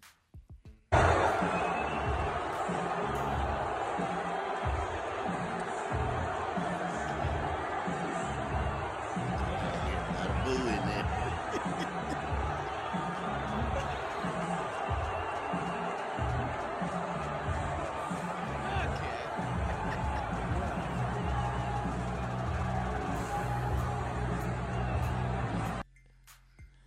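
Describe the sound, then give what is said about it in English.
A large indoor crowd at a UFC match at Madison Square Garden roars with sustained booing for about twenty-five seconds as the president and his sons, Donald Jr. and Eric, enter the arena, loud and steady, with scattered cheers and shouts mixed into the dense wall of noise. “He was met with a mix of boos and some cheers, too.”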